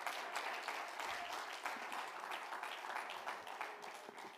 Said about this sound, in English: If you believe that tonight, clap your hands. Hallelujah.